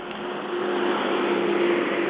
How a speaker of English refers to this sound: Tractor with big hay bales on the back.